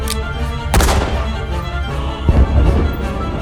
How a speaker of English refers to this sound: I love explosions.